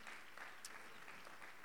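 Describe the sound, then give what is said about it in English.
A church audience claps their hands unto the Lord in a dense, steady patter of overlapping claps that holds at an even, fairly soft level throughout, with no break. “Come on, clap your hands unto the Lord today.”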